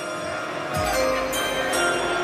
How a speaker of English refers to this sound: The pick is in. Please, ring the bell.